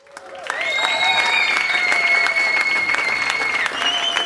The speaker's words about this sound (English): Do I need to do a drum roll or? We need applause or something.